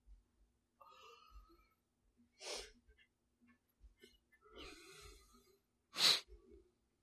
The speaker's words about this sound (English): What? They got me yawning. Ha ha. You gave me your contagion.